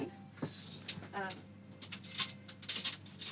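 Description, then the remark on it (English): Sticky cheese curds being scooped and transferred into a pot: irregular soft clinks and scrapes of utensil against cookware over a few seconds, with a brief murmur of a voice early on. “Now, all we're going to do is transfer it into one of these pots.”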